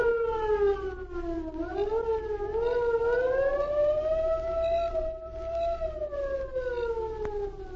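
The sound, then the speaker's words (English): A far-off air raid siren wails steadily, its tone slowly rising and falling over a low rumbling background, with no voices present. “There they waited until the distant air raid siren sounded.”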